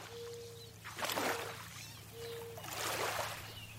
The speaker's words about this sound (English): sound map of the Housatonic River